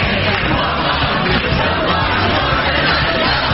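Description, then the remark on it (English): A fired-up crowd cheers as the Las Vegas city council approves a measure making it illegal to camp or sleep on streets or sidewalks, in a dense, continuous roar of overlapping voices, with yells rising out of the din at a steady, loud level throughout. “Of the city council approving the measure in front of a fired up crowd.”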